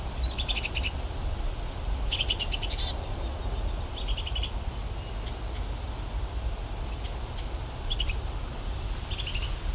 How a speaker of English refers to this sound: Oh, there's a black-capped chickadee.